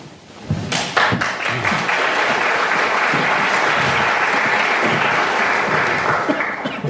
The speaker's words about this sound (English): So I think a round of applause for Tom as well.